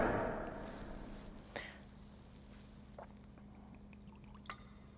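Water pours briefly and softly into a wine chalice during a church liturgy, fading within a second, followed by a few faint, sparse clinks against a steady low hum.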